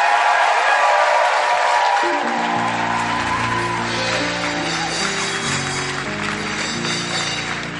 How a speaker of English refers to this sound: Okay, give Jesus a mega hand clap.